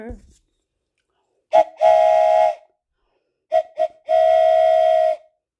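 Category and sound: vehicle, train whistle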